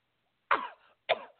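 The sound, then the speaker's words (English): Two sharp, harsh coughs, each bursting loudly and trailing off, separated by a short pause, with no talking. “I mean, who coughs like that?”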